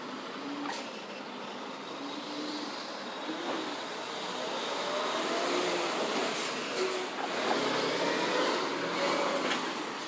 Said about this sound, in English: And another truck is right here.